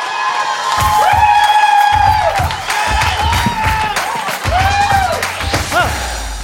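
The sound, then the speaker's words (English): A loud audience at Connect Church erupts in cheering for the first speaker, with high whoops and shouts rising and falling over a steady roar and scattered thumping claps for several seconds. “Now, give a loud cheer for our first speaker,”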